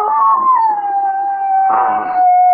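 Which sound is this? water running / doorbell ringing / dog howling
dog howling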